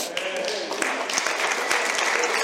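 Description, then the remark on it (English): An audience clapping together, a dense, steady wash of many hands for a couple of seconds, fairly loud throughout, with a faint voice briefly audible underneath near the start. “And right now they're clapping, listening to me louder than you're clapping.”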